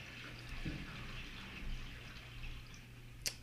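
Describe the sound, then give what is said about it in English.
A toilet flushing upstairs: a faint, muffled, steady rush of running water, with a low hum underneath and a brief tick near the end. “just flushed the toilet upstairs.”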